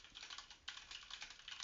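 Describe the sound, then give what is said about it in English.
Rapid, steady clicking of fingers typing on a computer keyboard, fairly quiet, with a continuous patter of keystrokes and no voices. “That was me typing.”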